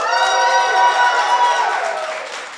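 A crowd cheers and whoops loudly for a couple of seconds in answer to a call for Evil Geniuses fans, a dense wash of high-pitched voices that holds steady before tapering off slightly at the end.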